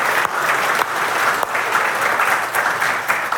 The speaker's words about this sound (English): So I want to welcome everyone who's watching us online from our Plymouth, Milton, and Bethlehem location. Church, would you clap for all of our locations?